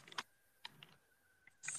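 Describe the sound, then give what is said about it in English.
A handful of sharp, clacky keystrokes on a computer keyboard, irregularly spaced and fairly quiet, with a faint steady electronic whine underneath and no voices. “You have a loud keyboard. Yeah, I have a clickety clackety keyboard.”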